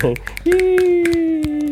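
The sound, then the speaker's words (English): A few hands clap in an uneven, scattered burst of applause while a voice lets out a long sustained cheer over the clapping. “Round of applause.”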